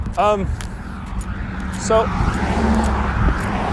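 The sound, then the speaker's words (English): Steady roadside traffic rumble with cars going by, swelling louder toward the end, while a couple of brief voice-like tones break through near the start and middle. “There were a lot of cars going by, and I just really couldn't even get a word out at this point.”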